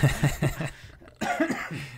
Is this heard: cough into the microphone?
yes